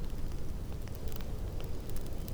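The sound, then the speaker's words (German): A crackling fire of a few dry branches: a steady, low rushing roar with sharp little pops and snaps scattered irregularly on top, fairly quiet and without any voices. “Sein Knacken klingt freundlich, als wäre es froh, dir Gesellschaft leisten zu können und als wolle es dir von seinem Tag berichten.”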